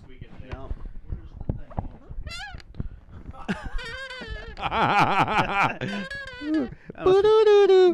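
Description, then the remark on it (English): A squeaky chair sound effect: a run of clicks and creaks gives way to long, wavering, whine-like squeals that rise and bend in pitch, growing louder and harsher toward the end. “Squeaky chair sound number two.”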